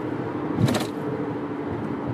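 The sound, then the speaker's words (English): Steady road rumble from inside a moving car, with a brief hiss-like whoosh around the middle as another car moves over into the right lane. No one speaks. “Infinity, QR, whatever that car is. You're going to move to the right lane.”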